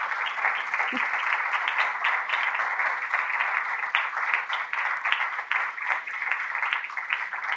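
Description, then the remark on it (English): An audience at the Pratt Free Library's Dr. King commemorative lecture applauds the speaker, Dr. Barry Black, Chaplain of the United States Senate, with steady, dense clapping at an even level for several seconds, a broad crackling wash of many hands with no voices standing out. “I think that deserves a hand of applause.”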